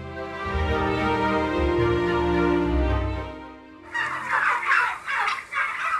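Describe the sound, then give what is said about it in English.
Several turkeys gobble loudly in a shed on a family farm in Biggar, a dense warbling chorus at first, then sharper overlapping bursts of gobbling. “This was recorded before the avian flu outbreak, so happily we were able to visit with some of their birds on the family farm in Biggar.”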